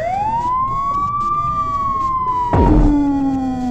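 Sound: emergency vehicle siren passing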